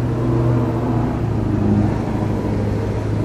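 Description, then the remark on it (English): A big pickup truck, a Chevy 2500, rumbles steadily as it passes by, a deep, continuous low-pitched engine drone that holds at a fairly even loudness throughout, with no voices. “Sorry, that's a big truck.”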